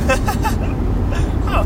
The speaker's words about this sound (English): I also have no idea how this audio is going to sound with all the wind around the car. I might turn out fine, might turn not. I don't know.